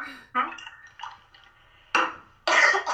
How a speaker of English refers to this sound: And hang on, I'm going to get a drink of water.